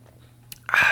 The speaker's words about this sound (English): Had to sip the tea before it gets too cold, you know?